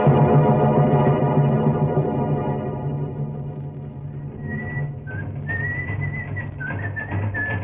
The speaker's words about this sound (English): Say, what about this guy you hear a whistling and punching that bag? What about this guy, huh?